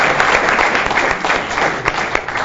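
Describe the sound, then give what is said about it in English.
A crowd applauds the recipients steadily, dense overlapping clapping from many hands at a loud, even level throughout, with no voices breaking through. “I want to give all of the recipients another round of applause.”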